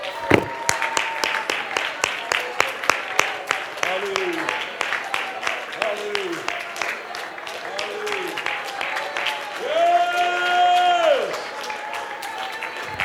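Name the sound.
audience clapping hands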